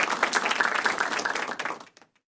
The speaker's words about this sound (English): Golf clap.